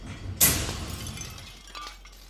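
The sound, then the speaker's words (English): An unsteady shelf pushed into two guards in a warehouse crashes over with a sudden loud impact, a bright shattering burst followed by a second or so of rattling, clattering debris that fades, with a few faint thuds at the end. “You push an unsteady shelf into the guards.”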